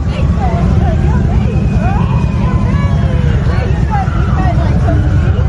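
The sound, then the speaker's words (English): Loud, steady low rumble of motors running fairground rides, a constant mechanical drone throughout, with indistinct crowd chatter faintly audible above it. “But if you know what it is, it's probably the motors that run the rides”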